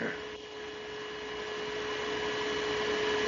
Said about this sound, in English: All right, I had a fan on. I guess it was just hitting the...